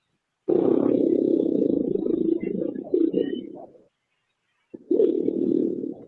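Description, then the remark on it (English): A deep, rough growl rumbles for about three seconds, then breaks off into silence before a second shorter growl starts up, low-pitched and loud throughout. “The growl that makes them howl.”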